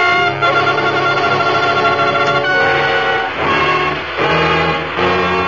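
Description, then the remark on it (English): Monsieur Doré's small plane's engine drones with a steady harmonic hum as it fights strong air currents rising from the coast near Tarzan's cabin, then falters and sputters, its roar dipping briefly twice before picking back up. No one speaks. “The motor was sputtering feebly now,”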